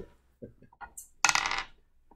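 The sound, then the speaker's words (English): Dice being rolled for an attack in a tabletop role-playing game, landing on a critical 1: a few light, scattered taps, then a brief, bright rattling clatter across a hard surface that quickly stops. No one speaks. “And he rolls a critical 1.”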